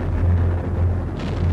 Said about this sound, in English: one of the USS Johnston's submerged depth charges went off beneath Hagen